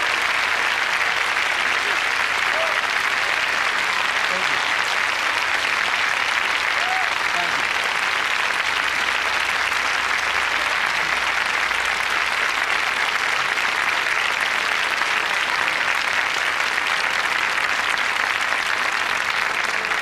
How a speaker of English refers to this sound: Let's give Mrs. Rosa Parks a round of applause, if you please.